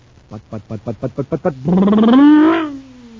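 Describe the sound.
A voice imitates a cosmic surface car engine supercharged with super fuel: eight quick, evenly spaced sputters, then a long, loud roar that swells in pitch and slowly winds down, alone.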